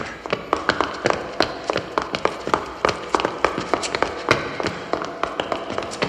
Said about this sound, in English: Those shoes just hitting this concrete. Oh, man.